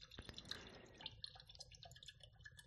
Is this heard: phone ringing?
no